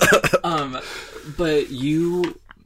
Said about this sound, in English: Sorry. No, it's great. People, we can edit that coughing. Out. Well, edit that out. We might edit that out. We'll see.